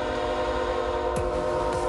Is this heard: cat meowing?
no